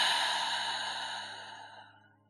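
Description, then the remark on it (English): A single slow, deliberate exhale of breath during a breathing exercise, airy and breathy, gradually fading out over a couple of seconds with no talking. “Breathing in. And hold. And then exhale.”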